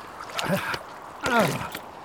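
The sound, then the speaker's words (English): A rowboat bumps ashore on a lake shore at Gerasenes after a lake crossing, with a few wooden knocks and short splashes of water, while brief muffled vocal sounds rise over the sloshing in two bursts. “This lake crossing was a little too exciting for my comfort.”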